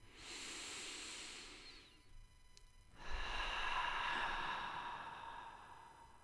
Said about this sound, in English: And with that, I'm going to encourage any of you who are still with me to take a couple deep breaths right now with me.